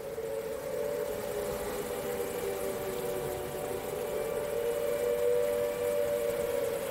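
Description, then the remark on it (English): A flood warning siren sounding during floods in Hebden Bridge holds a steady, droning tone for the whole stretch, moderately loud, over a constant rushing noise in the background. “Here is a YouTube clip of recent floods in Hebden Bridge, where they had to sound the sirens.”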